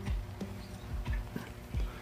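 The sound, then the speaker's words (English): A large flock of thousands of birds flapping their wings, heard as a steady series of soft, low thumping beats, moderately loud, with no voices. “I thought there was cars driving on the road a second ago, and I realized it was bird wings flapping over there.”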